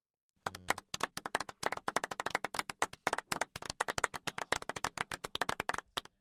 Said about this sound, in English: Golf clap, you sir.